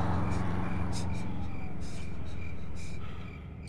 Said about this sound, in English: A split second after the Aston came to a stop, 3 federal vehicles sped down Route 17 with their lights and sirens blaring.